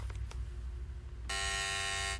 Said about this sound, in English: Yeah, hit that fucking buzzer again, because what the fuck was that?